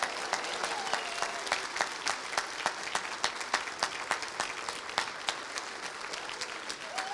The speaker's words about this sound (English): Round of applause for the children, the stars of the show.